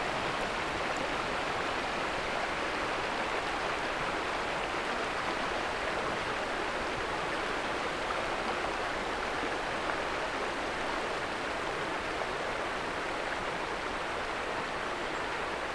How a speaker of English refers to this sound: were floating in a kayak downstream from some rapids. The river current is slowing down.